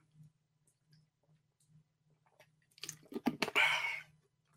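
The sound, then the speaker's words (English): Wet mouth sounds near the end as someone sips water: a few quick clicks and smacks followed by a short breathy slurp, after a near-silent start. “Sorry, sipping on the old Jose Cavossier. Water.”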